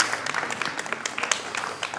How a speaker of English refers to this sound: I feel like he deserves a round of applause for getting through all those names.